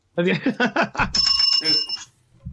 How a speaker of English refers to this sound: What's with the bell, man? You've done that twice. Yeah, it's a plug bell. Okay. It's a plug.